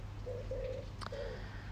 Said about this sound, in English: I don't know if you can hear that. The pigeons are cooing. It's that time of day here.